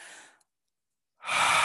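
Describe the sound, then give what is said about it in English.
A breath trails off into a short silence, then a loud, breathy rush of air begins, a deep deliberate exhale through the mouth during a guided breathing exercise, with no talking. “Whatever came out, whatever you feel is still coming through, go ahead and breathe it out as we do our next breath, okay?”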